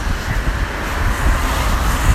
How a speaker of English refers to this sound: There's a shitload of cars driving towards me as well, and it's getting windy.